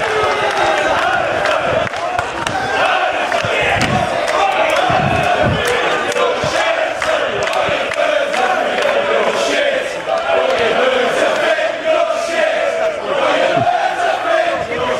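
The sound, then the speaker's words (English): A large World Cup soccer crowd chants in unison, a loud, continuous roar of many voices with a sing-song rhythm and occasional sharp claps or stomps cutting through, chanting that the other side is terrible at soccer but has beautiful girlfriends. “So they're saying you're terrible at soccer, but your girlfriends are beautiful.”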